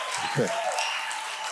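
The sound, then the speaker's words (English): A steady wash of audience applause, a dense crackle of many hands clapping at an even level, with a brief voice rising over it near the start. “No, I feel bad because I didn't say it in order for you to applaud.”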